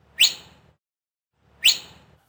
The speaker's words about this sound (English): He cupped his hand and then whistled for Manoah. Manoah!